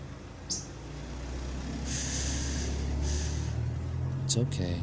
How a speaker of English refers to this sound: It's okay. It's just a car.